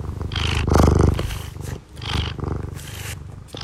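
A male domestic cat purrs, a steady low rumbling vibration that swells and fades with each breath, about three cycles, with no one talking.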